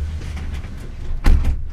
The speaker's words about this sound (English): Before I do that, though, I'm going to close the window because I can hear it.